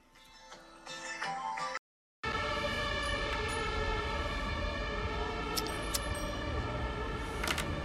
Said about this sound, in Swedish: Välkomna till Södermalm, stället där det händer. Här hör ni brandbilar, sirener. Jag sitter i ett Stockholm som är oroligt.